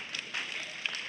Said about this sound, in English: A rather weak golf clap when I talk about paying taxes.